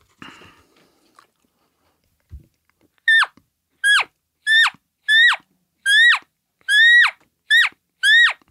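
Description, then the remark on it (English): An imitated lost elk calf call, made to draw an elk out of a brush patch to investigate: eight short, high, nasal mews with a squealing downward bend, repeated at a steady quick rhythm, loud, after a few seconds of faint rustling. “You start making a lost calf, a lost calf call.”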